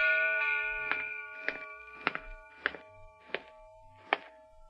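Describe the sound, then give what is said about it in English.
A town alarm bell on an isle rings out with about six steady, evenly spaced clangs, each strike landing over a sustained, shimmering metallic tone that hangs between blows. No voices are heard. “Silence that dreadful bell.”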